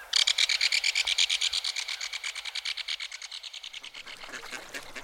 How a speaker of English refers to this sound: Several pairs of mallards paddle around the shallows, quacking companionably as they dunk their heads in the water looking for food.